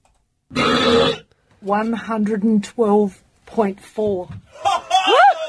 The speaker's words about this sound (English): That didn't sound like a burp, really. It doesn't sound human.